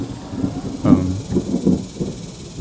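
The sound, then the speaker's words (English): A low, rolling rumble of thunder, following lightning seen in the sky, swells and fades in uneven waves for a couple of seconds, with a broad hiss of background noise underneath. “I was wondering if I said something offensive and was the lightning on the left or the right?”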